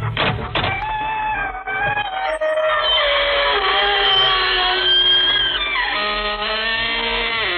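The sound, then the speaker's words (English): The creaking door of the radio show Inner Sanctum creaks open slowly in one long, loud, drawn-out squeal, its strained pitch wavering and sliding for several seconds before shifting upward near the end. No voices accompany it. “This is your host to welcome you through the creaking door into the inner sanctum.”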